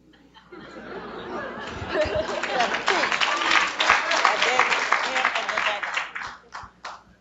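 An audience breaks into applause after a question about using social media for social change; it swells quickly into a dense, sustained wash of clapping mixed with crowd murmur and a little laughter, then thins out to a few scattered claps at the end.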